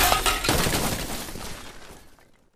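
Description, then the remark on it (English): A machine explodes with a loud burst that opens into a dense spray of shattering, clattering debris, shards of singed machine and chunks of creatures, raining down and gradually thinning out over a couple of seconds, without any voices. “followed by smoke, then fire, then a bright blue explosion that ripped through the sky with a thunderous crack. Shards of singed machine and chunks of captured Gralion rained down.”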